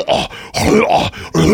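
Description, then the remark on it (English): A person's voice imitates their dog Ripley retching before vomiting after she ate a giant ball of hair: three loud, strained, throaty heaves in quick succession, each a groaning, gulping burst separated by brief pauses. “And it's like, I've never had more anxiety when I hear that, and I know the puke is coming”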